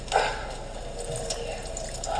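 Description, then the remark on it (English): Cold water runs steadily from a tap to cool a burn from a knocked-over pot of boiling water, a continuous splashing rush with faint spattering bursts, at moderate loudness throughout. “No, cold water's the best thing.”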